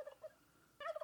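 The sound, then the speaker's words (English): A turkey gobbles in two quick, warbling bursts with a short pause between them, the second burst louder and rattling. No one speaks. “Turkeys wake up to the sun, and their day begins very early.”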